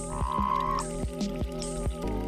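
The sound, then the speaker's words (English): A Sonoran Desert toad gives weak, low-pitched toots, each lasting less than a second, a few short hollow calls repeating at an uneven pace. Fairly quiet, with no talking. “The call of the Sonoran Desert Toad has been described as a weak, low-pitched toot, lasting less than a second.”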